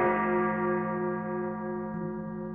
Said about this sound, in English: And all of a sudden they just start hearing this bell go across the water and they're like, oh, how romantic.